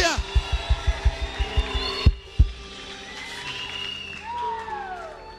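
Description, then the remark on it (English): An audience cheers and screams, with overlapping high shouts and whoops rising and falling over a steady crowd roar, while a quick run of deep rhythmic thumps pounds through the first couple of seconds. “Let me hear your loudest scream.”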